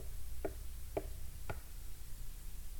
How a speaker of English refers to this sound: You might hear some knocks over there too.